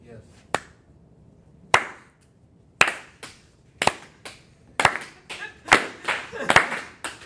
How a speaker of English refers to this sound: How many people clap that much during worship?